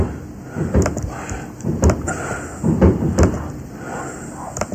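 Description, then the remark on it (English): New Year fireworks explode very close by in a series of four or five dull, low booming bangs at irregular intervals, each a short thump fading quickly, with no one speaking. “Those fireworks sound very close.”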